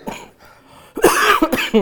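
A person coughs several times in quick succession, loud, after a brief moment of near quiet. The harsh, raspy bursts come in a tight cluster.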